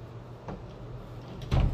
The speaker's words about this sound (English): Bro, why'd you close the door?